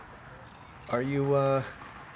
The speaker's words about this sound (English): He digs into his pocket and hands you a set of keys. A faded keychain ornament dangles from the keychain, the rubber-shaped state of Virginia.